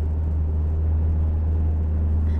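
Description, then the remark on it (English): Steady, low road rumble from inside a car cruising on a freeway as the driver misses an exit, with a big black truck in the lane to the right; a constant droning hum with tire and engine noise and no pauses or talking. “What happened was that there was a car, well, it's a truck, a big black truck in the lane to my right, which was the lane to get on the freeway.”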